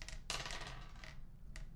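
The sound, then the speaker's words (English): Dice clatter and tumble across a hard tabletop in a short burst of sharp, rattling clicks, followed by a final brief click as they settle. Fairly loud, with no voices. A roll of one difficulty die for an easy athletics check in a game. “And roll an easy athletics check. Easy is only one difficulty dice.”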